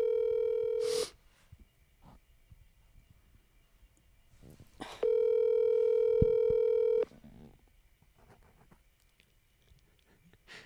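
An outgoing phone call to Texas rings out: two steady electronic ringback tones, one short and one longer, separated by a few seconds of quiet line hiss. No one talks.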